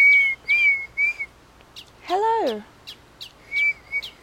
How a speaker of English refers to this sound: Yeah, that bird's been singing for a hot minute. I think, like, even while I was preparing my phone to start recording, that bird was, like, trying to get our attention.